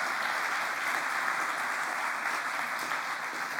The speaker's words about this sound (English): Because, yeah, we should give them a round of applause as well.